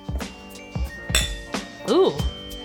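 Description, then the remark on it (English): A series of sharp, bright clinks like glasses tapped together in a toast, a handful of quick hits spaced irregularly, with a brief voice sounding partway through. “Here's to another year. Cheers. Tink. Cheers. Our glasses are empty.”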